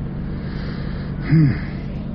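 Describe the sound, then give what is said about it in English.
Steady low rumble of road traffic at a highway bus stop, with a vehicle swelling briefly louder as it passes, then fading back into the constant hum. “All right, I have arrived at the highway bus stop where I was hoping not to have to arrive, but it's better than waiting an hour.”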